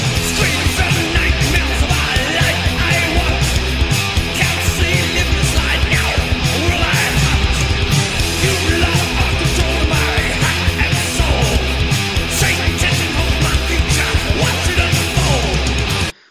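Loud, dense rock music plays throughout, with a harsh screamed vocal riding over heavy distorted guitars and pounding drums, steady and unbroken until it cuts off abruptly.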